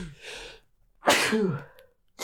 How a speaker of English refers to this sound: I feel like I'm about to sneeze again.